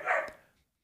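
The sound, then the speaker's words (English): A single sharp dog bark, clear, quickly trailing off into silence with no other sounds around it. “That might be the first time we have officially gotten dog barks on the podcast.”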